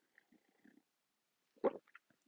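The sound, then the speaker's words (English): Quiet sipping of a hot pumpkin spice coffee on a fall morning: a soft low gurgle, then a short slurping burst and a few small wet clicks of swallowing, with no talking. “I'm gonna grab me a sip of this pumpkin spice coffee on this fall morning.”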